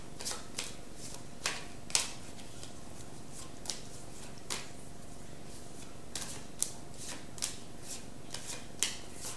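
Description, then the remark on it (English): Cards are shuffled and one more card is drawn from a deck for a Sagittarius reading: a string of crisp, irregular flicks and snaps, fairly soft, over a faint steady hum, with no one speaking. “Okay, Sag, let me get one more card for you.”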